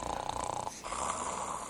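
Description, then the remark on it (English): A voice imitates a man's snoring: a rough, rattling inhale, a brief pause, then a longer raspy breath, steady and moderately loud with no talking. “3 weeks ago, I was sleeping on my bed, and I woke up because I heard snoring on my bed. The snoring of a man.”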